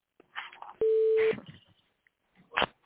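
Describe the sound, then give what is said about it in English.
A single loud, steady electronic phone beep lasting about half a second, surrounded by brief bursts of rustling and clattering noise. “Somebody's phone beeping.”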